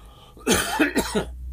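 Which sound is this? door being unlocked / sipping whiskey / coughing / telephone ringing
coughing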